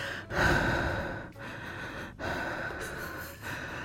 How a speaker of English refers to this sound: Heavy breather. Jeez. Mouth breather.